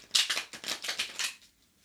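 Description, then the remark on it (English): Tarot cards being shuffled in a quick run of crisp, papery riffles, about seven or eight rapid flutters, fairly quiet, with no voices, fading out at the end. “All you gazers out there listening, just connect to the cards by hearing the sound of them being shuffled.”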